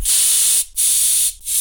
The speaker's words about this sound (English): The bearded, belligerent buggerer has been blasted by the potent pepper spray and will no longer be abusing those little boys on the watch of Hastings Vice.